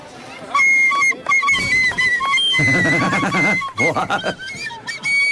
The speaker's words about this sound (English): playing our national anthem on the tin whistle in the Coot Hill Parade.